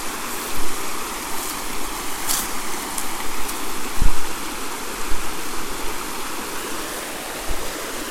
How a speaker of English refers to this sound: I hope the creek can be heard.